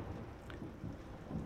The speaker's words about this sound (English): And, yeah, boy, I'm getting distracted by the thunder here. It's pouring where I'm at.